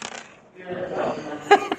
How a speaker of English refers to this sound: Okay, so roll two dice.